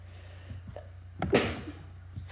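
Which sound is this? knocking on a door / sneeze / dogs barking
sneeze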